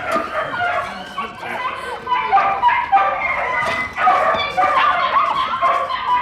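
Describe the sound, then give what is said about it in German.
A crowd of dogs being let out of a kennel barks and yips all at once, a dense, nonstop chorus of overlapping high yelps and woofs, loud, with no pause for the whole stretch. “Die Hunde kriegen wir nie alle in Sicherheit.”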